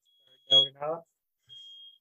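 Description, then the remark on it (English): A smoke alarm sounds a thin, high-pitched steady tone, faint at first, then a louder sustained beep after a short burst of a person talking. “Uh-oh, a fire.”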